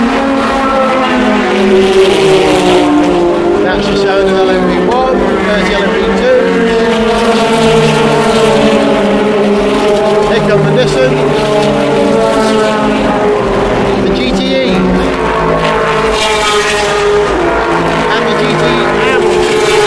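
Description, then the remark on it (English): Race cars roar by at the start of a race, coming over a hill beneath a bridge, with overlapping engine whines that rise and fall in pitch, while a loud standing crowd cheers and shouts throughout, keeping the noise dense and steady for the whole stretch. “That'll be the first glimpse I get of the car.”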